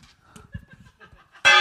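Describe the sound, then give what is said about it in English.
Faint, low murmuring sounds give way to a single loud strike of a gong with a gong stick at the very end, ringing out bright and shimmering. “Where's my gong stick gone?”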